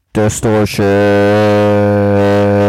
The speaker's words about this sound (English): Distortion. There we go.